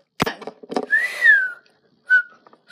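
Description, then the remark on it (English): A clear whistled tone rises and falls in a smooth glide, followed by a second short whistle, with a few brief clicks and breathy noises in between, fairly loud. “Everybody hates whistling in the morning.”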